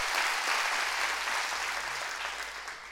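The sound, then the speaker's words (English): A group of people clap their hands together in a dense, steady burst of applause that stays loud throughout and tapers slightly toward the end, with no voices rising above it. “Are you happy about that? Clap your hands and you be seated.”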